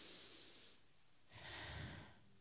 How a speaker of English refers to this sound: My fifth point, keep breathing. Everybody take a deep breath.